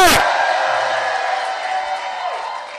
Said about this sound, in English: Give Jesus a shout of praise.